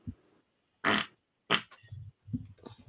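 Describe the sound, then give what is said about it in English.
A fart rips out in two short, loud, noisy blasts, followed by a few lower, quieter sputtering bursts trailing off, with no talking. “First fart of 2024.”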